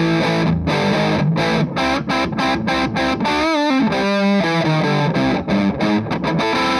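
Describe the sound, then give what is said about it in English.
A heavily fuzzed electric guitar, played through a Muff fuzz pedal turned all the way up, plays loud, saturated chords in a rhythmic chugging pattern, with a brief bending, warbling lead phrase in the middle before the thick, driven chords return. “It gives you a ton of drive. Like it almost gets into like kind of distortion territory.”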